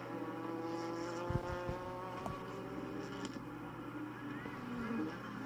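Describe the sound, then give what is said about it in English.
A race car's engine drones steadily along the front straight, its pitch shifting slightly as it passes, with a few brief thumps and rattles mixed in. It is the race leader, car number 62 driven by TJ Aker, on its final lap of a Group 4 race. “Coming on to the front straight.”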